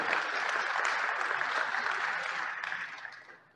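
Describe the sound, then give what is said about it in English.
A crowd applauds the table leaders with steady, dense clapping that holds strong for about two and a half seconds, then gradually thins and fades out. No one speaks over it. “I hope you all return. Let's hear it.”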